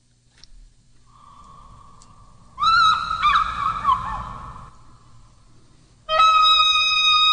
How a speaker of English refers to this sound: So here's the teaser sound. It was an eagle and an oboe.